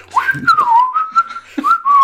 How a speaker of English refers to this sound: just came down whistling.